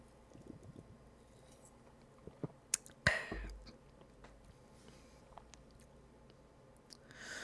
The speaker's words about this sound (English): And so here we go. But first, a sip.